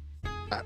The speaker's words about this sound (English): Gesundheit.